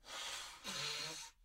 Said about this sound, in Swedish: Kan du snyta dig rätt in i micken så att du verkligen får alla att känna ett stort obehag över att ha satt på den här podden. Här kommer den.